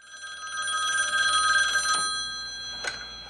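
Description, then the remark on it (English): A telephone rings with a steady, trilling bell tone that sustains for a few seconds, loud, with no voices; in a film scene, a call from the character Norm Olsen, the Olympic boxing scout. “The scene immediately kicks off with a phone call from good old Norm Olsen, the Olympic boxing scout, in case you have forgotten about him.”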